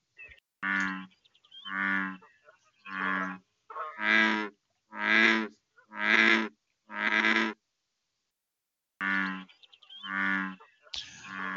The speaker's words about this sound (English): Okay, the answer is bullfrog.